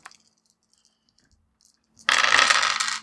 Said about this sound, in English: So you're going to roll a total of 6 dice and you're going to keep the 3 highest.